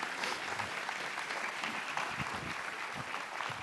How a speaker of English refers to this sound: Y'all give Miss Hope a hand clap of praise this morning.